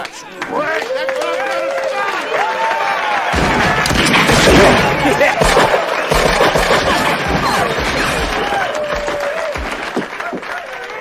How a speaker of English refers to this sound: Wow, that is so different from us whispering, like just the gunshots and everything going off. It's weird. It's totally different.